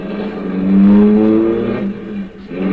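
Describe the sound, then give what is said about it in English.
A car engine revs up and pulls away, a steady rising hum swelling loud then easing off as the vehicle drives on, with no voices present. “Then we drove on.”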